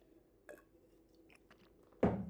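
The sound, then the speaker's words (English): Someone takes a sip of water: a few soft, wet mouth sounds and slurps, then a louder gulp near the end, with no talking. “Hang on, I have a sip of water.”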